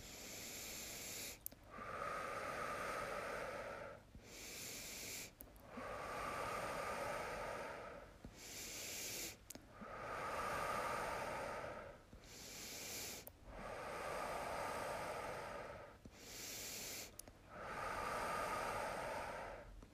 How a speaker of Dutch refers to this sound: Maak je ademhaling luider en luider voor jezelf met een diepe gemiddelde snelheid.